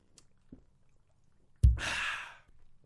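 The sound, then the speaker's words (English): A few faint, soft swallowing clicks from someone gulping down beer, then a sudden bump and a loud, breathy exhale of satisfaction lasting nearly a second. No one speaks. “I was taking large sips, even gulps, you might call them.”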